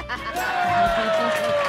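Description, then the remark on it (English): A live audience: a lively crowd roars and chatters together in a steady, dense wash of voices, with one higher tone sliding slowly downward above the din, like a cheer or whistle. “Listen to the crowd.”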